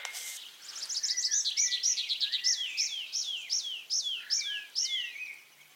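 Dawn chorus birdsong in the Brecon Beacons at about 8:15 in the morning, with one bird repeating a quick series of bright, sweeping chirps in a steady rhythm over soft background calls. No one speaks.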